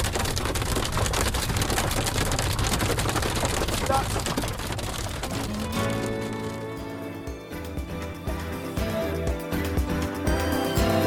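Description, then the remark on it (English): Hailstones suddenly pelt a car while its occupants watch a cycling race on their phones: a dense, rapid clatter of countless sharp impacts, loud and unbroken, the texture thinning and changing partway through as the drumming continues. “We were watching the race on our phones, and we were about 15-20 minutes ahead of the race only, and suddenly these hailstones began falling on the car.”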